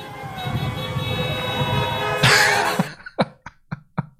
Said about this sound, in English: and you can hear them honking car horns and air horns, and Joe Biden called them ugly folks. This isn't a political statement like those ugly folks over there beeping the horns.